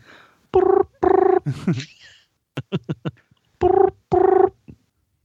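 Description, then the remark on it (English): A British-style telephone double ring from an outgoing call sounds twice, each time as two short, steady, buzzy tones in quick succession, loud, with brief vocal noises and soft clicks in the pause between. “A British telephone that rings twice?”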